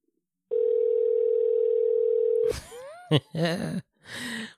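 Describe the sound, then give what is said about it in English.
A telephone ringing tone on an outgoing call sounds once as a steady two-second electronic tone. It cuts off into brief crackling and a garbled, muffled voice-like sound. “Nah, I loved all the rings that went past.”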